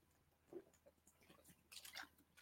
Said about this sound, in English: Let me have a drink of water as I'm saying that.